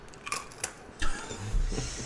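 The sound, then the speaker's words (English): Crisp crunching bites of food into a microphone, several brittle bursts in uneven succession with louder, fuller crunches toward the end and no talking. “He crunches into the mic.”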